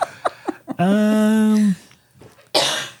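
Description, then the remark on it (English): A single sharp cough bursts out near the end, preceded by a few short vocal noises and a drawn-out, steady voiced tone. “I don't know when I'm going to cough.”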